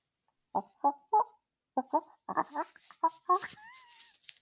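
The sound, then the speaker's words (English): A person imitates a monkey call with a run of sharp, rhythmic hoots and chattering yelps, rising into a higher squealing screech at the end. “Do you want to hear a monkey?”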